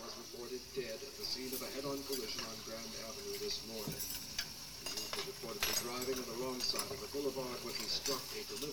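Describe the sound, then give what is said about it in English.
Busy restaurant ambience with frequent light clinks of silverware and dishes scattered throughout, under a steady murmur of people talking. “Doing a lot of silverware. Maybe that's dishwashers in the back.”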